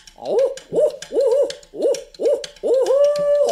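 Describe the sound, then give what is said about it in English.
A person vocally imitates an owl in competitive owl-hooting style, giving a series of six rhythmic hoots, the last one drawn out longer and louder, with no talking. “You are a very effective owl hooter from a competitive standpoint.”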